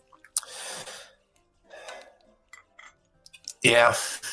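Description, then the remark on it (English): Wet slurping sips of hot coffee, two short pulls separated by a pause, then a louder breathy exhale right after swallowing. “Gonna get quiet for a second, just take a sip of the coffee.”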